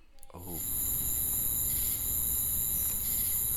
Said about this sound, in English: We got the crickets again on that one.